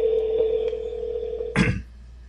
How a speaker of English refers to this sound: I haven't quite mastered the art of you guys not hearing the phone ring or whatnot, but whatever. You guys will hear it ring.